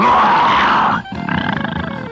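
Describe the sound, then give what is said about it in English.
A man's voice imitates the growl of a bear that guards a vault: a loud, rough, sustained roar that breaks briefly, then returns as a lower, rumbling, pulsing growl. “He says, can you growl like a bear?”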